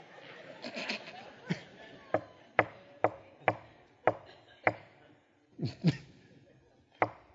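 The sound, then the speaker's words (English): Knocking on a door: a steady run of sharp, loud raps about half a second apart, then a short pause and a few more knocks, with faint murmuring noise at the start. “And finally some say, would somebody go get that door?”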